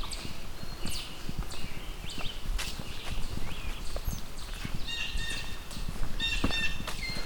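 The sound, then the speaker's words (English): Repeated hollow knocking calls from chipmunks, a steady series of soft, low clucks, with faint birdsong chirping in the background of an outdoor setting. “It can actually be kind of easy to confuse that chipmunk sound with cuckoos.”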